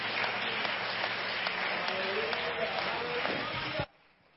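A church audience applauds in praise of the Lord at a Mother's Day morning service, dense, steady hand clapping for nearly four seconds, a continuous crackling wash of claps that stops abruptly.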